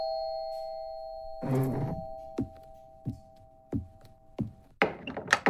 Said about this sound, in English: Instead, we find newly retired sanitation engineer … knocking on the condo door belonging to … aging secretary.